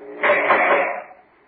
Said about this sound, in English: Oh, guard, open the cell door.